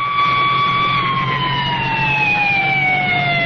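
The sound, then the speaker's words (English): A loud ambulance siren holds a steady tone whose pitch slowly slides lower as the ambulance, carrying a passenger, pulls away from an accident on a highway, over a low engine rumble, with no talking. “An ambulance swings away with its passenger.”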